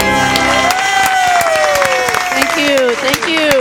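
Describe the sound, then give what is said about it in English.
A show audience welcoming a guest indie filmmaker applauds loudly and steadily for the whole stretch, dense clapping mixed with rising and falling whoops and cheers, sustained without a break. “That's long applause.”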